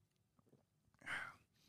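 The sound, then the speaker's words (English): A single quick sip of Maker's 46 bourbon from a glass, a soft slurp lasting under half a second after a few faint clicks, with no talking. “I'm sitting here sipping on this Maker's 46, which, by the way, let's take a sip of that now.”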